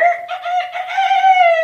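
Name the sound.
rooster crowing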